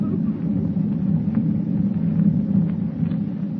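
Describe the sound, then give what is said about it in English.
A continuous, heavy low rumble of rolling thunder over the dark ocean, steady and loud throughout, with a dense booming roar that never breaks into distinct claps and no voices present. “With thunder rolling across the dark ocean like a warning of impending doom, Clark Kent watches the minutes slip by, knowing full well that to assume the role of Superman will be to reveal forever his double identity.”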